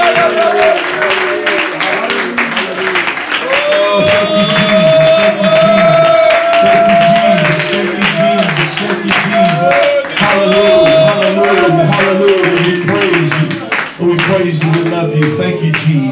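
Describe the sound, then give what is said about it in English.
A church audience applauds Jesus as praise with dense, steady hand clapping for about sixteen seconds, loud throughout, while raised voices and sustained musical tones carry over the clapping. “Why don't you put your hands together before you're seated and give Jesus a great big hand clap of praise.”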